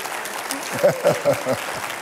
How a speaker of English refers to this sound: So, you already gave him a round of applause, so that's very much appreciated.